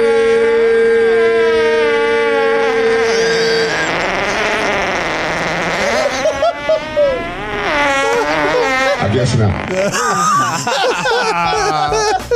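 Long, buzzy fart sounds play back to back and stay loud throughout, starting with a steady drawn-out tone and then wobbling up and down in pitch with sputtering, reedy textures.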